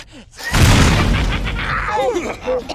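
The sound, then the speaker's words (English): A loud cinematic explosion bursts in with a deep rumbling boom that rolls on for a couple of seconds, with debris-like crackle and swooping whistling tones trailing off near the end. “Wow, that was an expensive-looking explosion.”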